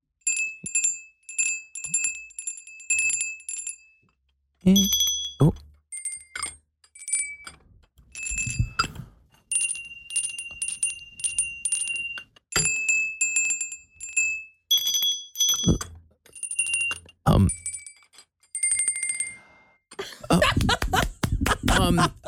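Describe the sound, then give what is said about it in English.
Jingle Bells plucked out on a bright, bell-toned instrument, with quick runs of repeated notes, short pauses and a few handling knocks, ending in a burst of rustling noise. “All right, Jingle Bells.”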